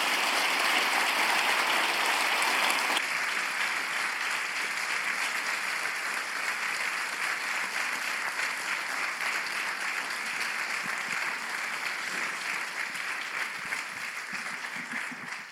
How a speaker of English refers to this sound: But can we just get a round of applause for everyone here?